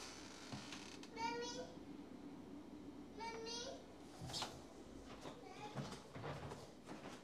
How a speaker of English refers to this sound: our dear son is going to sleep, and he just keeps screaming, mommy, mommy, mommy, over and over again